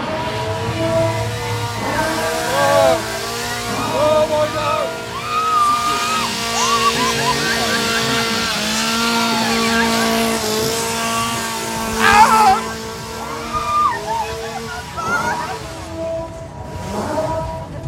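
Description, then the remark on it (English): A chainsaw revs loudly and close by at the end of the fifth and final attraction at Fear at Avon Valley, its buzzing engine whine rising and falling in pitch over a steady drone that runs the whole time, with no clear talking. “He was close with that chainsaw.”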